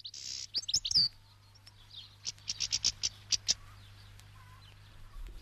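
Caged siskins chirp in quick, high-pitched bursts, an opening flurry of tweets and then a rapid run of bright calls, over a faint low hum.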